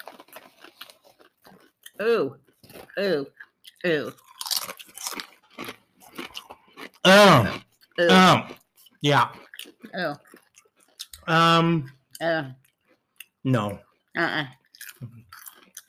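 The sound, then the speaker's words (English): Crisp crunching of snack chips being chewed in irregular bursts, mixed with people talking and murmuring over the munching. “It tastes like a hamburger. Like meat. Like you were chewing on some meat.”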